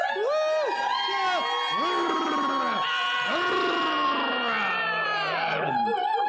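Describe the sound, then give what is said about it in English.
A large crowd in a giant arena cheers wildly at the arrival of wrestlers, a dense roar of many overlapping shouting and screaming voices that stays loud and steady throughout, with excited whoops rising above the din. “The crowd goes wild at your arrival.”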